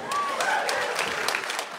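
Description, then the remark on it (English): A live audience claps steadily throughout, a dense, crackling patter of many hands with a brief whistle rising over it near the start. “You don't have to applaud, but it does feel good when you do.”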